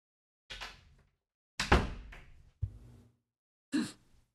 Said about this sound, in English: Is that the door to the Netherworld? Oh! I was closing the door to come back in.